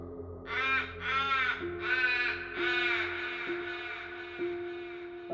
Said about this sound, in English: But the cloud moves too fast, and when Ray looks closer, he sees the cloud for what it is, a seething mass of crows.